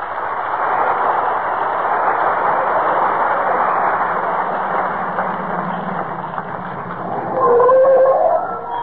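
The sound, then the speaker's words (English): A car drives up in front of 79 Wistful Vista in the radio show Fibber McGee and Molly, home from vacation, with a steady, rumbling engine noise, then its brakes let out a loud, high squeal for about a second before it stops. “Get them brakes fixed.”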